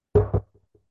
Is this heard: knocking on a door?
yes